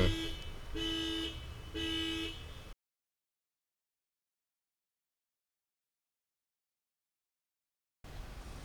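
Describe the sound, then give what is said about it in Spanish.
A bus's alarm blares in three rapid, loud honking pulses with a harsh, buzzy tone, then cuts off abruptly into silence before faint background noise returns. “Tuve que salir un momento a apagar la alarma de la guagua, pero ya estamos aquí de nuevo.”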